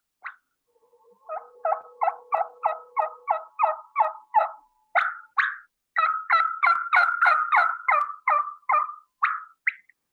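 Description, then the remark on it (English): Clear hen turkey tree calls and bubbly clucks blown on a Woodhaven Ellis New Energy mouth call: a quick, steady series of short nasal notes, then a denser, rolling burst, with no talking. “And so you're going to bubble cluck and give him some tree calls. And this is on a mouth call.”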